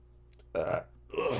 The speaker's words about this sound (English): I really had a burp.